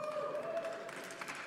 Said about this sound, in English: That was not the place to clap.